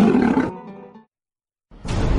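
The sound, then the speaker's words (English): A big cat lets out one loud roar that rumbles and fades away within about a second. A short silence follows before another loud, noisy burst starts. “One puff of Padilla and you'll roar too.”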